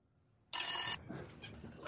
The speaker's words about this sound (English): Oh, God. Oh, shit. What's that? There's a phone call. There's a phone call. It's from Tubi Land Prison.